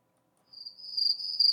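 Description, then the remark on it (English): A cricket, addressed on air as MC Cricket, chirps steadily, a thin high-pitched trill starting after a brief silence and continuing clear with a slightly pulsing rhythm, no voices present. “What does MC Cricket have to say? What do you have to say, MC Cricket?”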